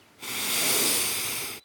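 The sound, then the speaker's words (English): A single long, steady inhale through the nose lasting over a second, a breathy hiss rising in loudness then fading, with no voices. “Birds chirp, and a mixture of sweet scents fill my nostrils. I inhale deep.”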